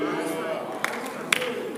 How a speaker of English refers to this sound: Only one Christian is clapping for Jesus. Hey. A lot of lecturers are here. That's why nobody is clapping.